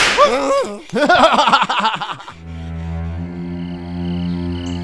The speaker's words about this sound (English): Back to work or I'll whip you into shape. Get it? Whip.